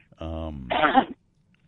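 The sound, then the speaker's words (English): A single sneeze: a short voiced, rising intake followed by a sharp, breathy burst, heard on its own with silence after. “Was that a sneeze?”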